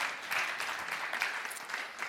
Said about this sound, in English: The apostolic gifting, some of you guys start clapping out of mercy because you know I'm running out of breath. I'm getting ready to pass out.